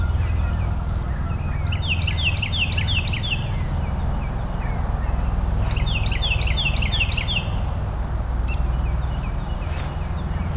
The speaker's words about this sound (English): But Carolina wren, they'll probably sing more right now. And there's another one singing. But, yeah, they're kind of a year-round singer.